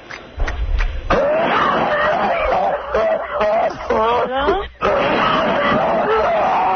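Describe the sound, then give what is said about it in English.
A man coughs hard and repeatedly after tasting wasabi, harsh, raspy bursts running into strained, wheezing gasps and sputters, loud and nearly continuous for several seconds. “My husband just tried something. My God, he's coughing up a storm.”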